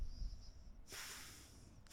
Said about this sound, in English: Stop breathing into the mic and just do it.